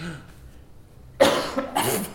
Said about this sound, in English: It sounds to me like the mayor has a terrible cough that we could exploit.